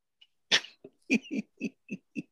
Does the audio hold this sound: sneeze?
yes